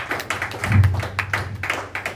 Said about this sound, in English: Yeah, y'all ain't got to clap. I'm preaching.